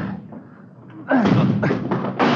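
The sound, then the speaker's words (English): A quiet, murmuring opening gives way to three or four loud, heavy thuds as a blocked front door, with something piled against it, is rammed repeatedly, each impact landing in quick, uneven succession with a rough, noisy edge. “Come on, hit it again. Yeah, all right. Come on. They got it blocked or something.”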